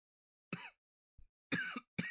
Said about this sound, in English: You're right over there? Yeah, I was coughing.